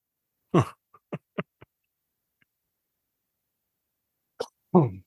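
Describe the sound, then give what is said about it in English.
A sharp cough bursts out, followed by a few small mouth clicks and quiet, then two more short throaty coughs near the end. No talking. “Made me cough.”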